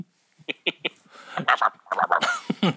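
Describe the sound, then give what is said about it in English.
A quick run of three sharp sneezes bursts out in a row, followed by voices talking and laughing over the tail end. “God bless you.”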